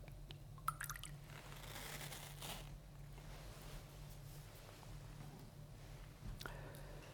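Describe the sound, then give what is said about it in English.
A small amount of water is poured into a chalice of wine: faint, brief liquid trickling and dripping over a steady low room hum, with a couple of soft clinks and no talking. “Through the mystery of this water and wine, may we come to share in the divinity of Christ, who humbled himself to share in our humanity.”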